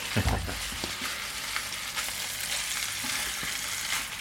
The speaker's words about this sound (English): They all fit rather nicely in the pan, and it is. So there we go. Fish frying in the pan.